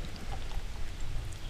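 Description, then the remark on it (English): Beer is poured badly into a glass during a beer tasting, a steady, gurgling splash and a soft fizzing hiss, holding an even level for just over a second with no voices. “Yeah, terrible pour on your part.”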